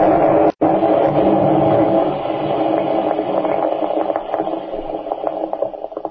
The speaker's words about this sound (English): As the slim, blonde young German raises his mesh-gloved hands, a brilliant white light which seems to illumine the entire forest flashes above him. And then there is a tremendous explosion.